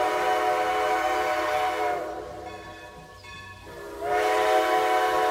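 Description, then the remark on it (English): A loud, shrill screech like a locomotive whistle blares steadily, fades briefly in the middle, then returns at full strength. Nobody speaks. “It was described by making screeches like a locomotive whistle.”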